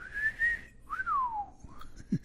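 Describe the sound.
A person whistles a wolf whistle: a short rising note held briefly, then a second note that swoops up and glides down, with no talking.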